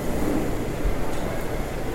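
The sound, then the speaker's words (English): A steady, loud low rumble fills a train station, like a passing train, with a constant din and no voices standing out. “And of course, there's these escalators down to the train station under the train station.”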